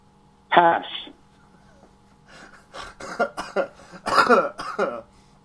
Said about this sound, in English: You have a cough button, don't you? Why are you coughing at the mic? I never hit it in time, though.